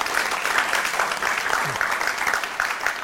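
An audience at a film lecture event of a university Film and Media Department applauds steadily to welcome a visiting professor from UCLA, a dense, sustained patter of many hands clapping at an even level throughout, with no voices standing out.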